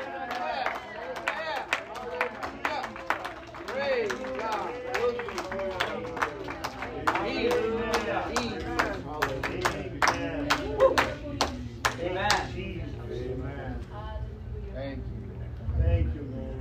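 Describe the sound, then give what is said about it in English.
A crowd claps and applauds together in praise of God during worship, dense irregular hand claps mixed with raised voices calling out, continuing strongly for several seconds before thinning out and fading near the end. “Let's laud and magnify him. Let's applaud him.”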